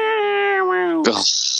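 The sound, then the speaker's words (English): A single voice mimics a screechy Dirty Dutch-style synth lead: a loud, nasal, buzzy tone held for about a second with a slight wobble, then a sharp breathy hiss that trails off. “And what I just did sounds like a dead cat.”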